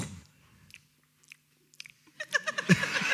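Close-up chewing with wet, crunchy bites: a few sparse clicks and smacks at first, then a denser, louder burst of rhythmic crunching toward the end. No one speaks.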